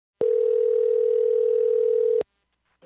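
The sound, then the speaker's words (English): A single steady telephone ringing tone, heard while a journalist places a call, sounds loud and clear for about two seconds, then cuts off into silence before a faint sound begins at the very end. “their phone number is easily accessible, so I gave them a call, and honestly, I didn't know what to expect.”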